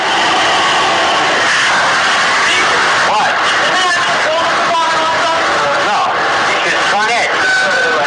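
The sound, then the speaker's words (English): A dirty vacuum cleaner, being put against a man's groin, runs loudly and steadily the whole time, a constant whirring roar with a high whine, while people's voices come and go over it. “That's the vacuum cleaner sound that you hear.”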